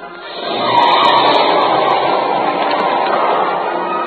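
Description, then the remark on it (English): A getaway car's engine roars up to full power and keeps up a loud, steady rush as it speeds off, with no voices over it. The car looked like it had bulletproof windows and solid rubber tires. “No use. He's got a car waiting.”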